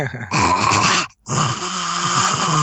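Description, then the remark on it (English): A voice actor imitates a harsh hacking cough as a sample: two long, loud, gravelly rasping bursts split by a brief silent pause, with a throaty, growl-like texture. “Okay, give us the coughing hack.”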